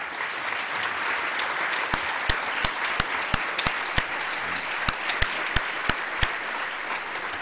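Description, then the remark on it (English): Steady, warm applause from a crowd at an LSE Public Events evening talk fills the whole clip as a dense, even patter, with a series of sharper, louder individual claps cutting through in a loose rhythm. “Very warm applause.”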